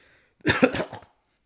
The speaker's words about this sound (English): Coughing on a phlegm.